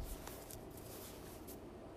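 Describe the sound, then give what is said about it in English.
Soft rustling and papery flicks of tarot cards being shuffled, a steady quiet texture with a few slightly sharper riffles, no voices. “All right, so I'm going to go ahead and start shuffling the cards.”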